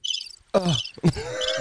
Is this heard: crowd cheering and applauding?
no